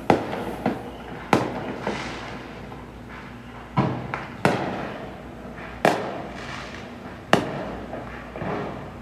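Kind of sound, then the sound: sound effect, fireworks exploding outside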